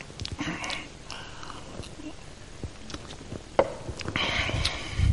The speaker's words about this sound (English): So let me get a sip of my drink.